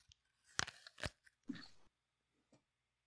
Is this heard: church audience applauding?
no